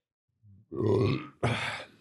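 A man lets out two loud burps in quick succession, the first long and guttural, the second shorter and rougher, preceded by a soft throaty grunt.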